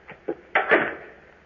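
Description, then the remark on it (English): An outer door being opened: two soft clicks, then a louder clunk and a scraping rush that trails off over about a second, with no voices. “Then here goes the outer door.”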